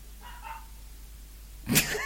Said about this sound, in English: Did you hear the dog barking in the background?